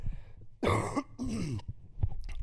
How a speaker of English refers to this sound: I'm going to cough first, though.